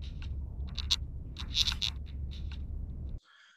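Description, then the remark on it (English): Harsh, scratchy record-screeching sounds that the Fireman plays, coming in a rapid series of bursts over a low rumbling drone, then cutting off abruptly near the end. “the sounds that I immediately think of that pertain to Judy is when the fireman plays the like record screeching, whatever have you ever wanted to describe the noise that he plays for him that we hear also when Laura gets snatched away in the woods.”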